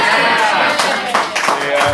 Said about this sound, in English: This is, I think, an alpaxi getting speared in the neck.